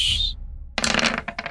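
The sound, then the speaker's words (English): Dice clatter across a hard table: a brief high ringing tap, a pause, then a loud rattling tumble that breaks into a few quick bounces as they settle, coming up 18. No one speaks. “18 on the dice.”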